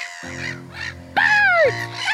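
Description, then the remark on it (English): Harsh, drawn-out bird caws ring out loud, a few overlapping calls with a sharp sliding one near the middle, over a steady low hum. “Birds! Ah! My classmates have all turned into birds!”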